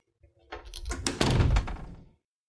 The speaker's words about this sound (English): You may close the door now. Okay.